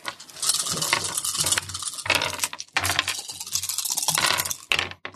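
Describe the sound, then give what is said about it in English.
Dice clatter and rattle across a hard surface in a busy, continuous burst of small clicks and taps, loud, settling briefly before another tumble near the end. “Roll screw dice.”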